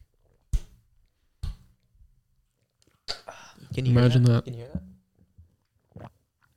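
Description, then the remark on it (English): Several short, wet gulps of someone swallowing a drink, spaced about a second apart, with a brief voiced murmur partway through and one more faint swallow at the end. “Can you hear that? I heard the one gulp.”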